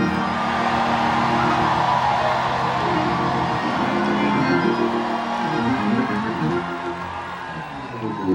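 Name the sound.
audience shouting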